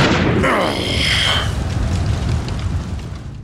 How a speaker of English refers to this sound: The explosion had knocked my attacker and I backwards, separating us,